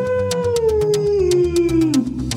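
A single long wolf howl slides slowly downward in pitch, sounding clear over a steady backing track with regular percussive beats. No one speaks.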